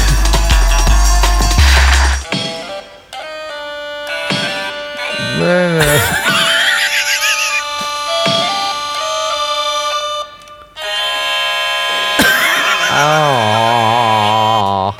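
A stylophone orchestra plays loud, buzzy electronic tones in layered chords, with swooping pitch glides and a wobbling vibrato line toward the end, and no one talking.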